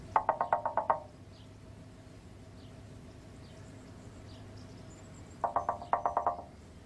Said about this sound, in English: The time that Jordan allows us to simmer in this moment, the confusion of driver Craig, played by Kieran Darcy Smith, as Jimmy delicately knocks on the window, simply never gets old.